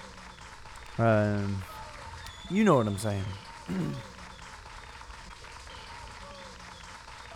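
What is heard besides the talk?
audience applause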